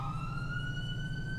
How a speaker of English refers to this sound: Hopefully I'll do my research and find a siren that works best.